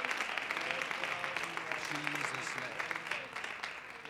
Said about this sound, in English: Give the Lord one more hand clap of praise as you're being seated tonight.